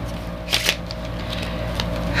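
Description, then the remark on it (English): Playing cards being shuffled by people practising their shuffling, with a couple of crisp riffling bursts near the start and another toward the end over a low steady hum. “Sorry for the shuffling, but we're trying to get good at shuffling now.”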